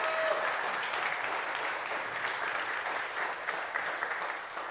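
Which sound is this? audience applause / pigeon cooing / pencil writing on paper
audience applause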